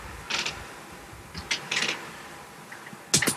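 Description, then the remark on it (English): A knee joint cracks and pops several times, a quick run of dry, irregular clicks with short gaps between them and no voices. “Oh, that was my knee.”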